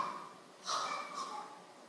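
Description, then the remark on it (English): Two quick, muffled coughs from an audience member seated toward the back, faint against a low hum, with no talking. “God bless you, whoever's coughing back there, that's lovely.”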